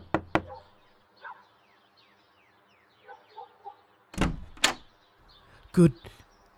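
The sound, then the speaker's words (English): Two quick, sharp knocks on a door as High Sheriff George Corwin arrives in the early morning hours to make an arrest, then after a pause a few heavier, louder raps, with faint murmuring voices in the background between them. “The following morning, High Sheriff George Corwin arrives in the early morning hours to arrest Mary. She answers the door in her bedclothes.”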